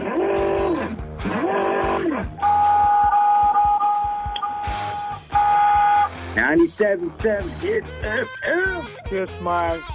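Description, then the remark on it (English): Voices imitate car horns with a string of loud, close honks and beeps. Short blasts come first, then a long, steady held tone, then rapid, wavering honk-like calls. “Honk, honk, honk, beep, beep, honk, honk, beep, beep.”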